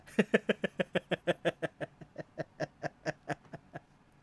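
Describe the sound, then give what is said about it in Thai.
A goat's bleat from the film Thor: Love and Thunder, broken into a rapid, stuttering run of about twenty short, even pulses, like a quick 'eh-eh-eh', held steady for four seconds with no talking over it. “แพะมันก็แอเหมือนกันแต่มันไม่โชกมันไม่มีลูกชบไม่มีลูกคอฮะแพะมันก็เลยออกมาเป็นอย่างนี้ฮะ”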